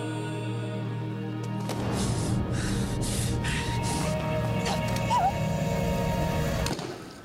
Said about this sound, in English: I'm like, are they maybe, is it maybe that gasp? That's the only thing I hear. That's what they're, I guess, saying is supposed to be Villanelle.